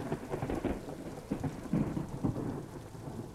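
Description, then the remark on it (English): A thunderstorm with steady, heavy rain hissing throughout and deep thunder rolling and rumbling low underneath, swelling in a few heavier surges. No voices. “Edom was born on a night when thunder shook the ground and lightning brought fire from the heavens to the earth.”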